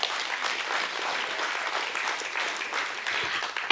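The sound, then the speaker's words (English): A crowd bursts into steady, sustained applause, many hands clapping together in a dense, even wash of sound that holds for several seconds without any talking. “We can clap for that, but y'all, that's for you.”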